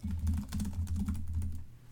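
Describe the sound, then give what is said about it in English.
Rapid, uneven clatter of keys on a computer keyboard, steady for about a second and a half before trailing off, with a low hum underneath and no voices. “Hang on, I'm going to make some typing noises really quickly.”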